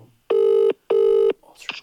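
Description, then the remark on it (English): A phone line rings out while a call is placed: two loud, steady buzzing tones with a short gap between them, followed by a brief faint clatter and a hint of a voice as the ringing stops. “Nah, I'm ringing.”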